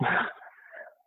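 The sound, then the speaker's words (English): A dog knocks over a whiteboard, which topples with a sudden, loud clattering thud, then a brief fainter rattle trails off within a second. No voices. “My dog's here. He just knocked over the whiteboard.”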